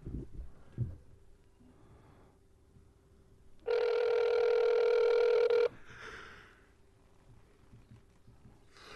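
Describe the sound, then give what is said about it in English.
A single loud, steady ringback tone from an outgoing phone call, lasting about two seconds, rises out of a quiet, humming background and then cuts off abruptly. “Come on, pick up, stupid.”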